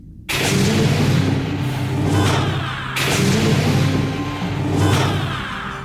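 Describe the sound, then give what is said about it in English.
A sliding door whoosh sound effect, played as a jingle when walking through a door into the United Federation of Planets President Circle, plays twice, each a loud, broad hiss with a low rumble that swells, fades, then cuts off abruptly. No one speaks over it. “I hit the door.”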